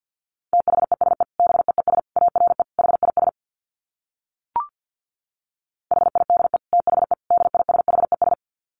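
Fast Morse code at about 50 words per minute: a steady mid-pitched beep keyed in quick dits and dahs, in two runs separated by a pause with a single short click.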